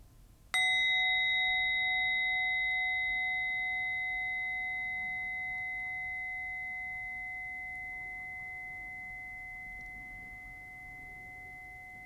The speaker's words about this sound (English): As we end this meditation, I invite you to take 3 deep, full breaths as I invite the bell.